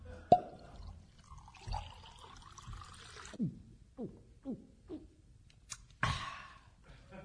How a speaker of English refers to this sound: Mr. Hard Disk has used gravity to pour and drink his milk.